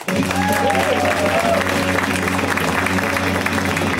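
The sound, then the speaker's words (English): A comedy show audience breaks into sustained applause for comedian Derek Sheen, a dense, steady wash of many hands clapping at even loudness throughout, with a brief whoop or whistle rising above it early on. “a round of applause for Derek Sheen.”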